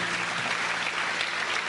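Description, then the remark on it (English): A crowd applauds steadily for Moses during a preaching given in English with Portuguese translation, a dense wash of many hands clapping at an even, fairly loud level with no voices standing out. “Clap for Moses.”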